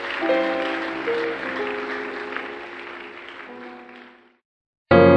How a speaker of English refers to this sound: Let's honor them, Koinonia. Thank you. Hallelujah. Praise the Lord. Let's keep clapping.